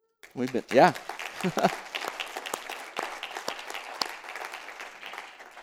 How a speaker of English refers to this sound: It may not be that every single person in here is clapping about that.